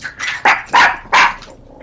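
The speaker's own dogs bark in a quick burst of four or five sharp, loud barks spaced a fraction of a second apart, with no talking over them.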